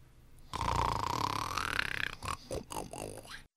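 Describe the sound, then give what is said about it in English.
A single loud, rattling snore rumbles for about a second and a half, followed by a few shorter snorting breaths, with no talking. “Gov might be perceived as a snoring sound.”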